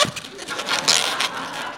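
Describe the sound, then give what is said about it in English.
Rubbery squeaks and rustling friction as an old balloon is twisted into the body and back legs of a Snoopy balloon animal, a steady run of bright, scratchy squeals with a few sharper bursts, no one speaking. “This is actually the part that sort of every animal you make out of balloons.”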